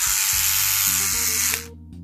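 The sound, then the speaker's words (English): A loud electric toothbrush, spinning back and forth, buzzes steadily with a bright, hissing whine and a low motor hum that shifts pitch, then cuts off abruptly near the end. “Electric toothbrush is good because it spins the thing back and forth so you can clean your teeth.”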